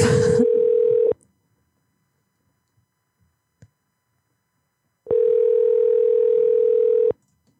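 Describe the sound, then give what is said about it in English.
A phone line ringing on an unanswered call that is then forwarded to an automated voice: a steady mid-pitched electronic tone sounds once, stops for about four seconds of silence, then rings again for roughly two seconds. “Your call has been forwarded to an automated voice. Hey, sorry you didn't answer.”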